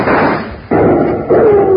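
Loud gunshots ring out in a shootout with men hiding behind boxes, about three sharp blasts spaced roughly half a second apart, each with a rumbling tail; a thin whining tone lingers after the last shot.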